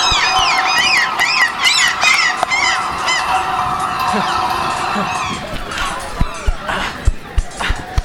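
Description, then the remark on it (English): A dense flock of attacking geese honks loudly and continuously as they dive at a ship's crew, many overlapping nasal calls, with sharp flapping and thumping bursts toward the end. “It takes more than a couple of birds to ruin my mug.”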